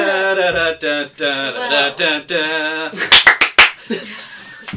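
A voice hums or sings a melody for about three seconds, then four or five sharp claps follow in a quick syncopated rhythm, like the clap break in the Friends theme.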